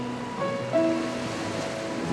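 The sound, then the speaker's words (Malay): A steady, rushing wash of ocean waves breaking on a wide sandy beach by a blue sea, with soft sustained musical tones drifting faintly over the surf. “Inilah pantai yang anda idam-idamkan. Bentangan pasir seluas mata memandang bersama lautan biru yang tiada penghujung.”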